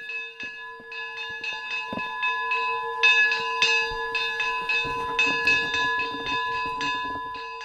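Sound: church bells ringing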